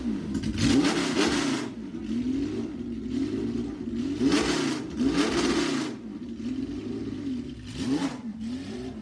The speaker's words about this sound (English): And that was another one where the owner or driver or minder, whoever was moving around, was not afraid of judicious use of revs and blips and throttle.